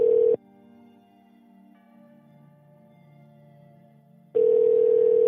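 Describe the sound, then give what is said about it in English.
A loud, steady telephone ringing tone sounds briefly, falls away to a quiet hum for about four seconds, then rings again, as a call is placed to a man's father's phone and waits for someone to pick up. “Let's fucking call his dad. Yeah, his dad's phone still works.”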